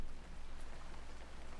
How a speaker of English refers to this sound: Outside, the rain was letting up.